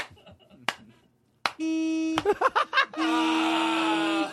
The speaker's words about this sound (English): Hey, Uncle Graham, your girlfriend's car is stupid. Yeah, listen to her dumb horn. She thinks she's a truck driver.